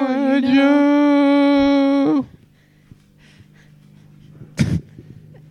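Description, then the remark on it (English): A loud, sustained whine rings out for about two seconds, then fades into near silence before a dog, Ralph, gives one short, sharp sneeze. “Your dog's bugging.”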